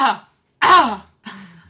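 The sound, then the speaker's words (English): Someone clears their throat in three rough, raspy bursts, the middle one loudest and longest, with brief silences between them. “I made that noise while I was clearing my throat because I deleted the footage and now it's gone.”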